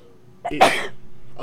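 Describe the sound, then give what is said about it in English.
A single sharp sneeze, a quick intake followed by a bright, explosive burst that fades within half a second over a quiet background hum. “Bless you.”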